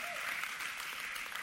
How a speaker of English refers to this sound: Everybody give the Lord a hand clap in this place.